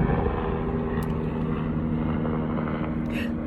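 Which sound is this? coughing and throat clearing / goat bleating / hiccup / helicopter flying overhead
helicopter flying overhead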